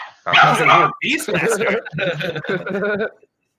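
A dog barks and yelps in four loud, drawn-out bursts, with brief gaps between them and no other sound around.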